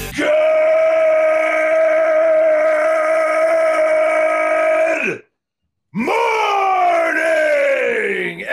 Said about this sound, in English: I heard the yell blow your headphones out.